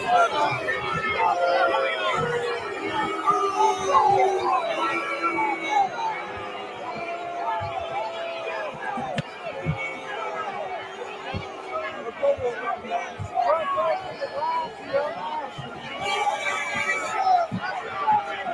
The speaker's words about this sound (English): So we're looking at people in black block trying to smash windows. And the crowd is yelling at them to stop, and people are stepping in to stop them.